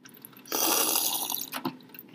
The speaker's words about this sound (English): All this water talk's got me thirsty. Let's have a sip, shall we?